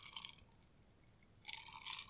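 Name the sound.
sipping a drink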